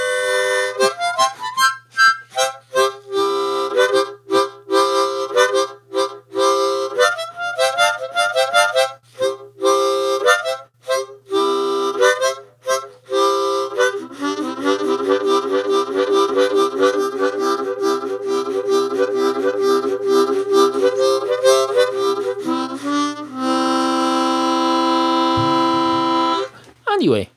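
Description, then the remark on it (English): A harmonica is played in bursts of reedy, buzzing chords, shifting between its low and high ends with short breaks, then settles into sustained wavering tones before ending in a brighter, higher-pitched wheeze at the high end. “There, I found the high end of the harmonica.”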